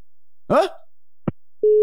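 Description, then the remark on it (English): A short vocal sound and a sharp click, then a steady, loud telephone out-of-order tone that begins near the end and is cut off, heard while calling a number back. “That's out of order.”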